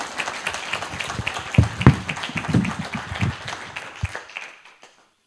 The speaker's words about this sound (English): maybe we'll give her a round of applause.